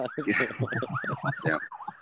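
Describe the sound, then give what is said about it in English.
A fire truck siren wails in quick rising and falling sweeps, loud and steady throughout, while a man talks over it. “Oh, it's a fire truck.”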